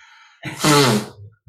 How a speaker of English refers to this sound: Who blew their nose? That's my job to blow my nose.